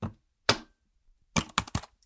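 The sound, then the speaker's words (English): Sharp taps on keyboard keys with no voices: two separate clacks a half-second apart, a pause, then a quick run of three more keystrokes. “Wasn't actually hitting the keys in the first bit because I didn't want to move the page down, but then it felt inauthentic.”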